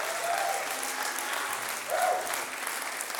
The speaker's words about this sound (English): Come on, stomp, shout, cheer.